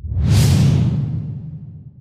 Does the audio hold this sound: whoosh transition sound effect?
yes